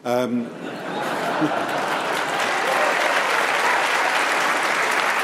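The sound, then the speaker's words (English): An audience breaks into loud, steady applause that holds for several seconds, a dense patter of many clapping hands, following a brief voice at the very start. “Let her have her applause.”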